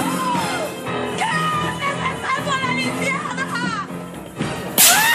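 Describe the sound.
Dramatic, swooping musical voices build, then a sudden gasp and one sharp, loud face slap crack near the end, punchy.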